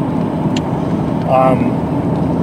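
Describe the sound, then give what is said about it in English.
A black-and-white car that looks like a converted police car, but is not one, rolls past, its steady engine rumble swelling to a brief peak midway with a short tonal whine before settling back into constant road noise. “Oh my goodness, this car.”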